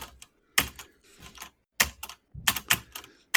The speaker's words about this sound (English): Your typing has come so far. I'm so proud of you,